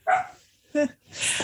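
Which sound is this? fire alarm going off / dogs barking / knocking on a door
dogs barking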